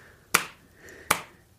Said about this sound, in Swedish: Och ju hårdare du slår, ju liksom långsammare kan du också slå. För då behöver varje slag liksom få klinga lite i kroppen. Det är jättebra. Testa att få med båda skinkorna med ett slag då. Får vi se.